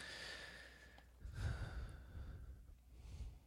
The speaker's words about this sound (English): And sorry, my breathing heavy. Like I said, I'm still getting over this crap, so just bear with me.